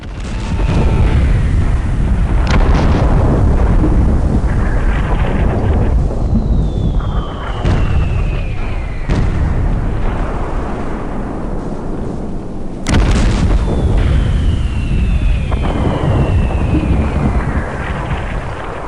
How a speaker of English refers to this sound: The Huns moved the siege guns into position and began crushing the city of Antwerp. They took the hammer fist and began to pound the city into submission.